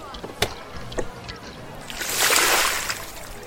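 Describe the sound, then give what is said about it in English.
Water gushes and splashes out of a car door as it is opened to drain the car, in a loud rush that swells in the middle and then eases off, preceded by a few short clanks and sloshes. “Open the door. Drain the water out.”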